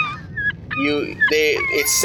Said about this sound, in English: So you hear very unfamiliar seabirds.